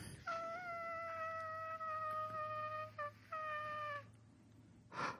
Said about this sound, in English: Was that the dragging sound? I didn't know if that was her screaming or if that was dragging. Oh my God. I think it was both.